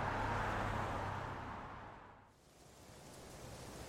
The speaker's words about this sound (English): Exterior Foundation Headquarters. Murphy's car parks just outside of a sprawling gated mansion.